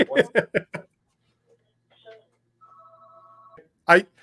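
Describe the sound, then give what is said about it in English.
A phone rings once with a steady electronic tone lasting about a second, after a brief beep. Someone speaks briefly before it, and another short voice follows right after. “On days when I pick up the phone, more people start calling me.”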